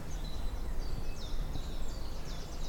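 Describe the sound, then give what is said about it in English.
Birds sing loudly in woodland beside a path on an estate, with several high, quick chirps and trills repeating over low, steady wind rumble. The birdsong continues throughout, with no one speaking. “You can hear all the birdsong here very loud”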